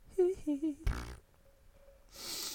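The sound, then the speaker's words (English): A fart: three short squeaky, tonal bursts in quick succession, followed by a brief rough blast and then a soft hiss of noise. “Hit that second fart, nature now, you bro.”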